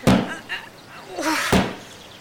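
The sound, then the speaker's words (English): Two heavy thuds about a second and a half apart as someone forces open a boarded-up door to get into a building, with rough scraping and a short strained vocal noise between the blows. “if we're going to get into the building, shouldn't we use an open door? One that hasn't been boarded up?”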